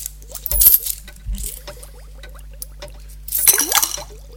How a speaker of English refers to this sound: I have the cauldron bubbling away with the hot water, and in the here I place the 20 pence.